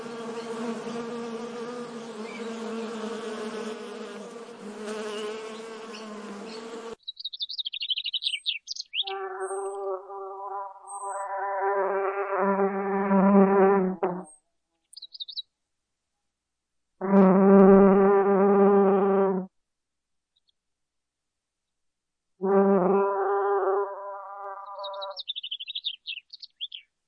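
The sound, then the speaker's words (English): Loud buzzing of bees, as in beekeeping, in several bursts, a long steady drone at first, then shorter swells separated by pauses, with faint bird chirps in the gaps. “and we're talking about bees and her beekeeping.”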